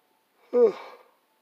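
A single yawn: a short voiced groan that bends in pitch, then trails off into a breathy exhale, about half a second long with quiet around it.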